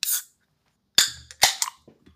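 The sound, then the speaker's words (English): A bottle of Loverboy wine by Cal Cook and Amanda Batula being opened: a sharp pop, a pause, then a burst of crisp cracks and clicks as the seal gives way, fading into faint rustling. No one speaks. “I have not even taken a sip. I'm about to open it now.”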